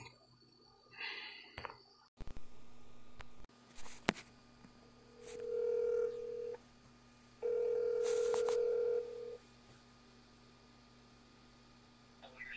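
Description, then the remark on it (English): A phone call being placed to get callers on the line: a few clicks and beeps as the line connects, then two long, steady ringback tones with a pause between them, clear over faint background hiss. “So anyway, we're going to get them on the phone, and we'll do our pick segment.”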